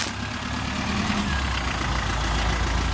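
A large truck with a trailer idles with a steady, low rumble and a broad hiss on top while maneuvering to park in a gravel yard under warm late-October sun, holding an even level throughout with no voices.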